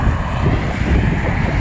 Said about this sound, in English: Here comes a car.